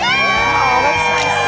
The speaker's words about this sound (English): Oh, I love it. Lots to celebrate. Yeah. Happy crowd out there.